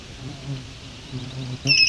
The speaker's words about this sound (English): Got swamp sparrows and red-winged blackbirds.